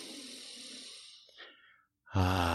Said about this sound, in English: So here's what you need to do. Take a deep breath, first off.